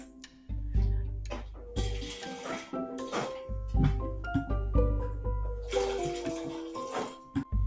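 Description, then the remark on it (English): Water is poured to refill a glass, a bubbly gurgling stream that starts and stops a few times, its pitch rising as the glass fills, with a faint low hum beneath. “Are you going to refill, bartender?”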